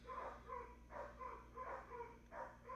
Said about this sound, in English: it's still there because Bones is barking